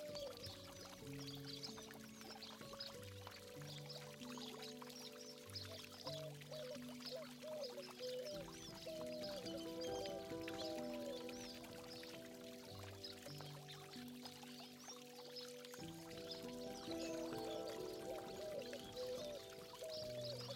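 Water splashes and pours steadily from a fountain in a courtyard filled with lemon trees, a continuous bright hiss for the whole stretch, while a soft, slow instrumental melody plays underneath.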